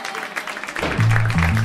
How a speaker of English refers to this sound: Big round of applause for everybody from round two and everybody you saw tonight.